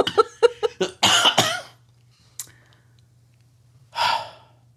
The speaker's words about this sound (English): we want to talk about …'s cough